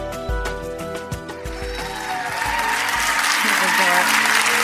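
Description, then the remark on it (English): An audience at Tree of Life Church breaks into applause that swells and holds steady, taking over from sustained organ-like chords and a few heavy thumps at the start, with some voices mixed in. “Between y'all clapping and him taking up all my time, I'm like, sit down.”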